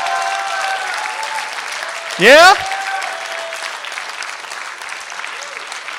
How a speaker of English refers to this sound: If there's anybody that wants to have a relationship with Jesus that you've never had that commitment, man, would you just jump up and can we all erupt for you with applause?